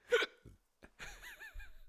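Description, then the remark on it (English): A sharp hiccup pops out at the start, followed by a short pause and then a wavering, voiced breathy sound like a stifled giggle. “Hiccup, because your rant was so funny.”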